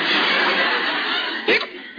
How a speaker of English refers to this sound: Otherwise, Jughead, do you have to hiccup like that? It's the only way I know how to hiccup.